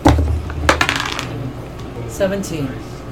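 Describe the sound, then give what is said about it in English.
Dice rolled for an attack with a spiritual weapon clatter and skitter across a hard surface in a quick burst of sharp clicks, settling after a moment, with low background murmur and a brief voice near the end. “Roll an attack, please, with the spiritual weapon.”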